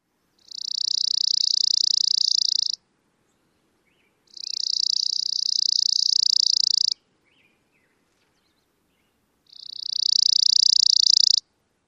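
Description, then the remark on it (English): Three long, dry chipping sparrow trills, each a steady rapid buzz of notes lasting a few seconds, separated by short pauses; the trills swell slightly in loudness as they go, with no voices present. “Oftentimes, the chipping sparrow trill gets louder.”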